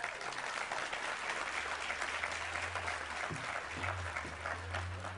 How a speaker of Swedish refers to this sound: Välkommen upp. En varm applåd.